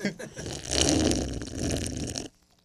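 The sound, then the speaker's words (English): A drink brought by Urban Forest being gulped down after a toast: about two seconds of continuous wet, gurgling swallowing, fairly loud and rough, ending abruptly in near silence. “This is what it sounds like going down.”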